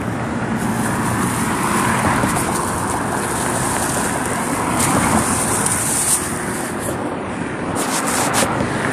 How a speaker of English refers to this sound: Oh, traffic going like crazy right now, too.